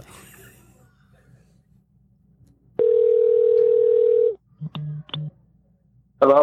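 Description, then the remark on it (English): A telephone ringing tone plays steadily for about a second and a half, followed by a couple of short, clipped beeps as the call connects, clear on a quiet line. “Can I answer the phone? Like, hello?”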